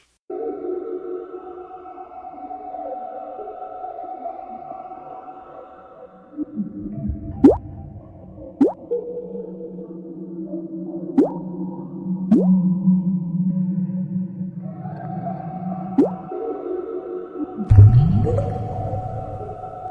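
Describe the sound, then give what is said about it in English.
Water drips again and again, about six distinct plinking drops landing at uneven intervals over a steady, low droning hum. The drops are clear, with no voices. “Let me see if we can visualize why the Bible says this is like a constant drip.”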